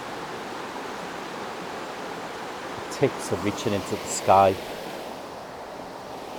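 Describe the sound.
A river flows with a steady, even rush of water that fills the whole recording, while a man speaks briefly over it partway through.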